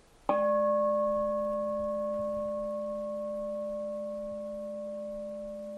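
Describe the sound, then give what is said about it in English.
A single mindfulness bell is struck once during a mindful listening practice, giving a clear, bright onset and then a long, steady ring of layered tones that slowly fades over several seconds with nothing else sounding. “And then we'll utilize the sound of the bell here, just being mindful of the activity of hearing.”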